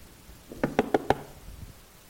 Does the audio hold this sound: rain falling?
no